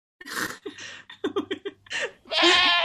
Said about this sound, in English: and some goats